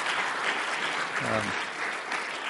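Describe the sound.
An audience breaks into a round of applause for a woman who has just shared a talk about Jesus, a dense, steady wash of clapping that holds at an even level throughout, with a brief voice rising over it midway.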